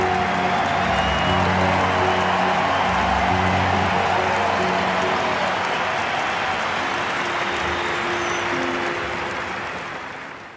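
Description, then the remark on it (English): A vast crowd in an Olympic Stadium roars with sustained applause and cheering as an assisted runner approaches the finish line, a dense, loud wash of clapping and voices that holds steady for several seconds before gradually fading away. “Swelling throughout Olympic Stadium as Redmond, with assistance this time, approaches the finish line he had wanted so desperately to reach.”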